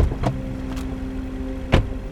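A single police car idles with a steady low engine hum, while a few sharp clunks ring out, the loudest a solid car door thud near the end as the police drop a man off. No one speaks.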